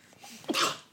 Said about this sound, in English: Sorry. Wow. Sorry. It's contagious. Bless you.